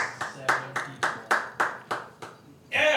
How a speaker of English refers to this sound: Should we clap at edit later. Points? Should you do that? Yeah, there you go.